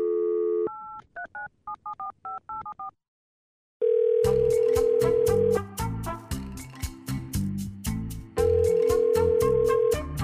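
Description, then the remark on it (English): A brief telephone dial tone, then a quick run of about eight keypad beeps, a pause, and a steady tone leading into loud, rhythmic music, opening the News Talk radio segment Thank You for Calling the White House. No one speaks. “Let's make a phone call.”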